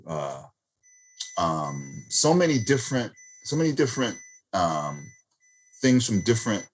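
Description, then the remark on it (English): A printer's thin, high electronic beeping tone holds steadily in the background while a person's voice makes sighing, groaning vocal sounds over it in several bursts. “Sorry, my printer was going off.”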